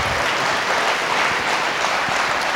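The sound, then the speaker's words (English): An audience gives the speakers a final round of applause in a dense, steady wash of clapping that holds at a fairly loud, even level for the whole stretch, with no voices standing out above it. “Well, let's give them one final round of applause.”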